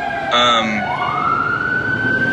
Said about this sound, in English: I was going to wait for the fire trucks to leave, but they already left.